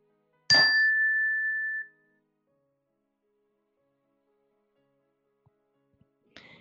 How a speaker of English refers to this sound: We'll begin the meditation with a ring of the chime, and we'll end the meditation with a ring of the chime.